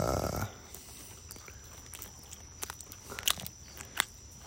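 Someone bites into and chews a Wendy's chicken sandwich during a mukbang, with soft crunches and moist chewing clicks scattered irregularly over a few seconds, a few sharper crunches standing out. No talking.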